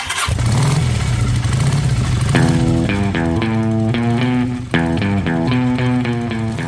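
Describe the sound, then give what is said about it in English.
A black Ducati motorcycle engine is kicked on and rumbles to life, idling low before being revved hard in several rising bursts, the pitch climbing and dropping with each twist of the throttle. “Parked just outside was a black Ducati motorcycle.”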